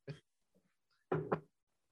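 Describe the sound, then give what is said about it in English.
Three knocks on a door: a single rap, a pause of about a second, then two quick knocks in succession, fairly loud, with no talking. “We have to knock three times or you won't answer.”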